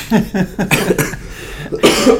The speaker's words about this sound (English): One second, because I'm going to have to apologise. I am literally going to have to cough.